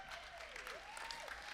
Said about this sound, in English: Come on, give her a round of applause.